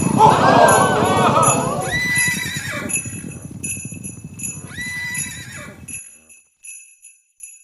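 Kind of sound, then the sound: animal, horse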